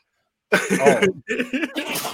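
sneeze

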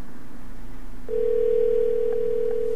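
telephone dial tone

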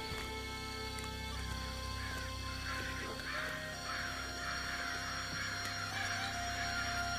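crows cawing

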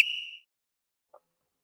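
referee whistle sound effect

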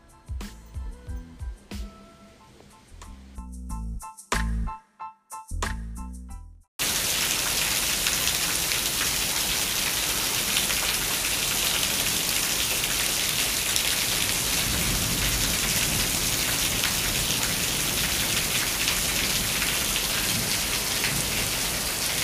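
rainstorm

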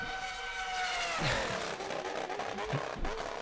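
car sound effect

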